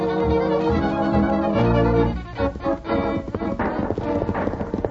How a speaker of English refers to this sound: From the sound, I'd say there must be 15 horsemen chasing him